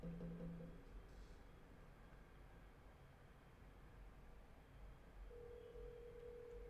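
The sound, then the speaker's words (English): A phone line rings out as an outgoing call to a woman waits to be answered: a tone burst, a long gap, then another burst, all faint and heard through steady low hiss with no one talking. “I'm about to make a call.”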